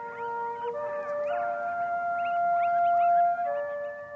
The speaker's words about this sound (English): Coyotes howl at dusk and dawn to the military music at the U.S. Army Dugway Proving Ground.